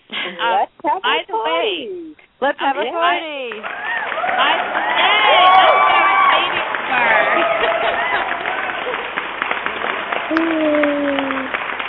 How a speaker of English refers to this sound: Just had to add some of the fun. It wouldn't be our show without that applause.